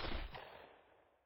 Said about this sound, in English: Yeah, that sounds like gunfire. Sounded like 3 shots, maybe? It's coming from ahead of us, so we don't really have a choice but to keep moving in that direction.